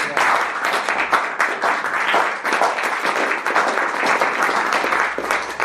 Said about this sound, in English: Thank you. Give the three of them a round of applause.